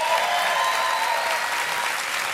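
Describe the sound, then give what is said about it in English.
A crowd applauds steadily, a dense wash of hand claps that stays loud and even throughout, with no voices standing out. “They're applauding your challenging experience.”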